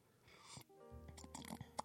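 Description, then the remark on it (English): A thick, wet slurp of coffee: an airy sucking hiss, then gurgling, throaty swallowing sounds with a few sharp little clicks, fairly loud and with no talking. “So let me get a little coffee sip here.”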